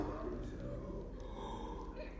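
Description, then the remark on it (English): A person lets out a long, exaggerated yawn, fairly loud, one drawn-out breathy vocal sweep lasting a couple of seconds with a faint hum in the background. “Then you start yawning.”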